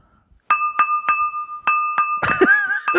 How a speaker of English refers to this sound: First of all, we'll repeat that example of jingle bells. Okay. With spatula and glass.